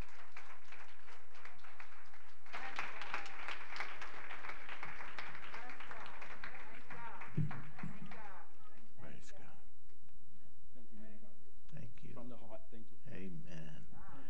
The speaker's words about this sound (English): Wow, come on, give the Lord another hand clap. Excellent, excellent, excellent word.